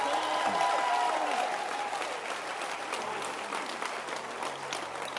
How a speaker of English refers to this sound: So let's clap our hands and appreciate